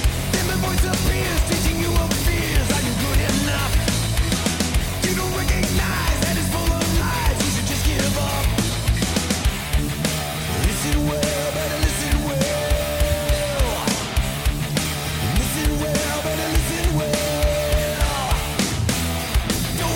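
A heavy metal song plays loud and dense throughout, with thick distorted guitar riffing over steady pounding drums, and a sustained guitar or vocal line rising out of the mix midway.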